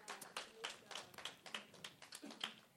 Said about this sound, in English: Welcome him. Give him a hand clap of welcome.